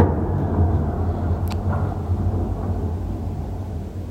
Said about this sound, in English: And there's one of the bigger blasts and hopefully the end of that moped.